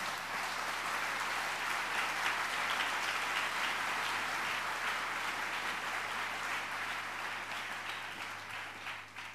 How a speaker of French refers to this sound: Clap for them. Applaudissez pour eux.